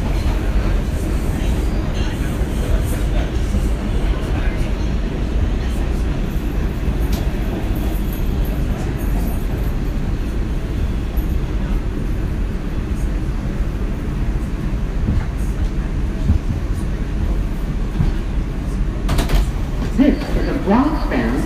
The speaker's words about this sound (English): Express train. The next stop is 14th Street. Stand clear of the closing doors, please.